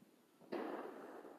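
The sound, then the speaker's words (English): A single loud firework bang bursts out suddenly after a quiet stretch, followed by a broad, rumbling crackle and echoing tail that slowly fades. “That was like a Hulk clap.”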